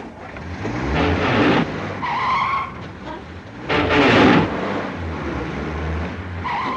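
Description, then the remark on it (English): A car engine revs and roars while tires skid and squeal in several loud bursts, with a steady low rumble underneath and no voices. “It is, after all, a car.”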